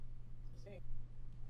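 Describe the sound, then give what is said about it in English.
A short electronic chime sounds once from a phone, a quick rising pair of bright tones of a message alert, set against a low steady hum. “It was a message I sent. I turned my phone off! Apparently not.”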